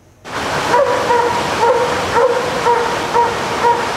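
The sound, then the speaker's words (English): A dog stuck at the top of rapids on the Seymour River in North Vancouver barks and whimpers in a steady series of short, high yelps, about two per second, over a constant loud rushing roar. No one speaks. “Their dog, Shaq, stuck at the top of some rapids on the Seymour River.”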